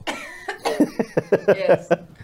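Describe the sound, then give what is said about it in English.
A harsh coughing fit: about eight rapid coughs in quick succession, fairly loud and rasping, with a slightly voiced, throaty edge. “Well, you might as well be smoking one if you're going to cough.”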